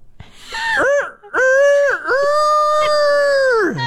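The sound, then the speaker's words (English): A person's voice imitates a rooster crow: a few short rising-and-falling syllables, then a long, loud, sustained high note that drops away at the end. “I'll try and do a little cock-a-doodle-doo and see where we stack up in all this, okay?”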